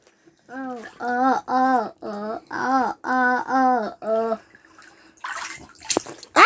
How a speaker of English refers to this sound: Stop splashing.